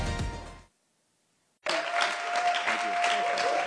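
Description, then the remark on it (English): A crowd gives God and Jesus a hand, clapping in a burst that stops abruptly, then after a second of silence the applause surges back, dense and sustained, with a faint steady tone running beneath it. “I'm not sure you heard that, but I wasn't saying applaud me, but I was saying let's give Jesus a hand.”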